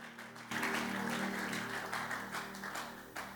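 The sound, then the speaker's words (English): A church audience breaks into sustained applause to celebrate God after a brief quiet moment, many hands clapping in a dense, steady wash with a low tonal hum underneath. “Celebrate God with a good hand clap in the house.”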